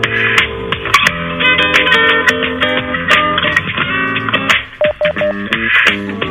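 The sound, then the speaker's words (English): Tinny, narrow-band telephone hold audio from a call placed on hold during a radio program: a dense wash of electronic tones with short repeated beeps cutting through, including a brief run of separate beep pulses near the end. “Call on hold. That's my bloody call that's on hold.”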